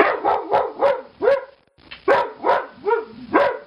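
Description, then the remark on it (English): A dog named Sparky barks in a quick run of about nine sharp, yappy barks, split into two bursts by a short pause, with no other sounds around it. “Boy, you're such a wise dog.”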